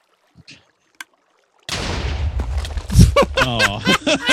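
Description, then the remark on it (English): A video game boat with a character in a protective suit inside slides off with a sudden loud, rushing scrape after a quiet moment with a couple of soft clicks, in an attempt to launch the person; the noisy whoosh continues with a voice briefly audible near the end. “Okay, hop in that boat and let's see what happens. It's sliding.”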